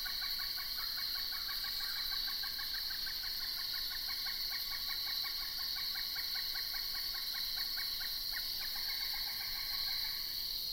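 A pileated woodpecker's long call: a rapid, steady run of loud, ringing notes lasting several seconds, set against a constant high insect drone. No drumming is evident and nobody speaks.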